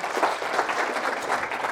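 A round of applause from a crowd, steady dense clapping at a fairly even level throughout, with no clear voices on top.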